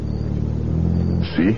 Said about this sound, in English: See how the car must practically crawl past because of the construction?